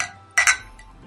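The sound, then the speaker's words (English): Glasses of drinks clink together in a toast: two bright, ringing taps in quick succession, fairly loud, then a brief fading shimmer into quiet. “Cheers. Cheers. Cheers.”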